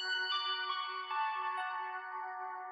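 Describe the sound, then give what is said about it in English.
A short movie sound clip of the kind used as a phone notification: sustained, layered musical tones holding steady and fairly loud for a few seconds, with no talking. “Wait, is that the Goonies sound? Yeah. That used to be my phone, like, notification sound.”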